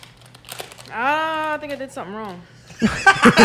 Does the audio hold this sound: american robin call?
no